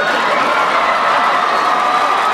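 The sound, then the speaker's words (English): Loud, sustained applause and cheering from a large sitcom studio audience as the character Urkel enters, with whoops and shouts rising over dense clapping, continuous throughout. “So Urkel, of course, Quinn, barges into wild applause from the unnecessarily rowdy television audience there.”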